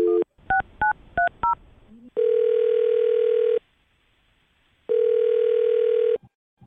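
Four quick telephone keypad beeps in rapid succession as a phone number is dialed, followed by two long, steady ringback tones separated by a pause, all clear with no one speaking.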